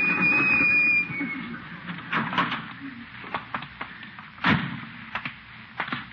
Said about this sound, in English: Slammed the door on my tail. Didn't even feel it.